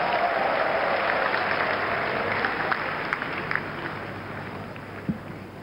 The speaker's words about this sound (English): If you believe that, sit and clap for Jesus.